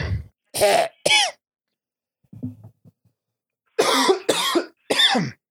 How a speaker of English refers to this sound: I'm coughing because I'm doing this voice too much.